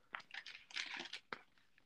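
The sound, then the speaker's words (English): Dry, crackly rustling of paper as pages of notes are turned, with a few sharp crinkles and a quick swishing burst, fairly quiet and with no talking. “I heard crinkling of papers. Yeah, I'm turning pages.”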